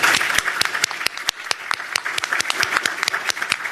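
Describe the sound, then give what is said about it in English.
A crowd applauds steadily for the people on stage and the advanced team of a show, many hands clapping at once in a dense, bright wash, with a few sharper individual claps standing out at irregular moments throughout. “So another round of applause for everybody.”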